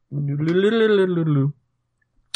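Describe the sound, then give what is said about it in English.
A person vocally imitates a dice roll for a perception check in a tabletop role-playing game, with a sustained, buzzing, warbling voice for about a second and a half, then a brief sharp click follows after a short silence. “That was my dice roll sound.”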